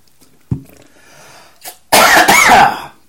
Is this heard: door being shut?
no